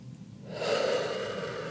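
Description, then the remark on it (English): A single deep, forceful breathwork inhale begins after a brief quiet moment and rushes on steadily, fairly loud, with no talking. “You're breathing it all away.”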